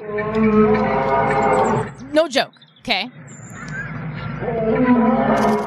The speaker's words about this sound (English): I hear roaring, like loud roaring. Let's see if I can find something. Lion roars. Let's see here. Oh, here we go. This is probably what I heard, all right?